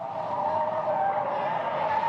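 A car's tires screech in a loud, continuous skid lasting a couple of seconds during a police chase in Alice Springs, with a steady roar of engine and road noise behind it and no voices.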